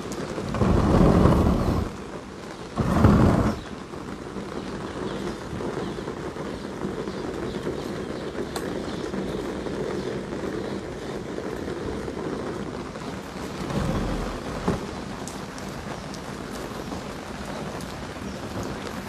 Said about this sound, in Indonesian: Jadi sekejap kita akan betulkan sikit kerana hujan lebat turun insya-Allah.